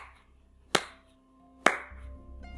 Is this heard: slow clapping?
yes